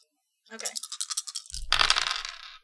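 Dice for a resources roll in a tabletop role-playing game rattle quickly in a cupped hand, then clatter loudly onto a hard tabletop with a dull thump, skittering briefly before settling. Clear, with no talking.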